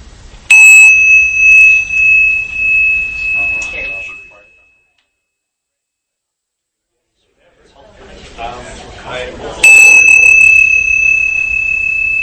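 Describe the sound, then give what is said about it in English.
A meditation bell rings twice during a group meditation session, signalling introductions and then silence. Each strike is a clear sustained tone that slowly decays, separated by several seconds of silence, with faint background chatter around the strikes. “And then when you hear the bell after that, then just come into silence and bring your attention into how it feels in your body.”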